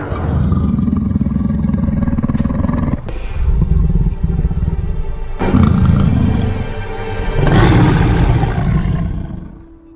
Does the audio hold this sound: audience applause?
no